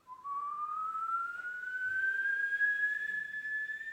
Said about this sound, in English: We suck the air in through the mouth and we make this whistling sound. Whenever you make the whistling sound, then listen too. So here you produce it and at the same time you listen to the sound as well.